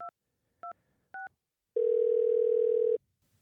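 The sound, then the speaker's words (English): Three short telephone keypad beeps, evenly spaced, as a phone number is dialed to place a call, followed by a loud, steady dial tone held for over a second before cutting off. No one speaks. “So I'm just going to try to get him on the line right now with the phone number that he gave me.”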